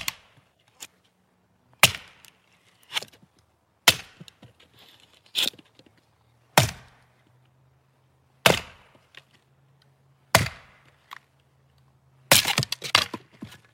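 An axe chops wood in a steady rhythm: around eight sharp, loud cracking strikes spaced a couple of seconds apart, with lighter knocks and splintering between them over a low hum.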